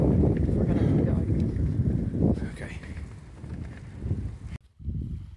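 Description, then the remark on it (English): Strong wind buffets the microphone in a loud, steady low rumble, with a brief lull near the end before it gusts back, at a spot in the middle of a village in a bay, overlooking mountains, a castle and a ferry. Muffled voices may be partly buried underneath. “We found a spot, it's windy, basically in the middle of a village, in a bay, looking over some mountains, a castle, a ferry.”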